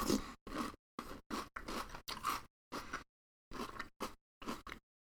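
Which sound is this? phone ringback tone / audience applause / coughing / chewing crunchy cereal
chewing crunchy cereal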